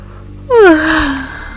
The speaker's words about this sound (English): Even though you were fully invested in the conversation, your body couldn't help but to yawn.